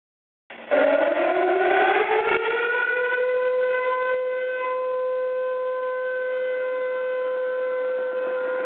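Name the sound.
alarm siren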